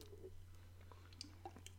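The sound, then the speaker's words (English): Someone takes a quiet sip of a drink, with a few small wet slurps and soft mouth clicks over a steady low hum. No one speaks. “In fact, I'm going to take a sip of my drink and celebrate this.”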